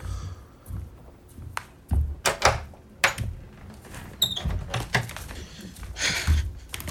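Repeated knocks on a door, a string of hard thuds at an uneven pace, moderately loud, with some faint rustling and movement between the blows.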